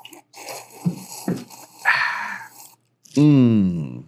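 Mouth sounds of sipping bourbon from a glass, with a few small wet clicks and a drawn-out slurp, followed by a loud, satisfied voiced 'ahh' exhale.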